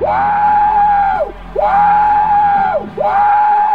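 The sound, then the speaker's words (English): A voice imitates a steam train whistle: three long, loud, wailing hoots, each swooping up, holding a steady pitch, then dropping off, repeated in a steady rhythm. “You sound like a big choo-choo train.”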